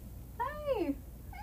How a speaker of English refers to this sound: did my cat just meow? I heard it.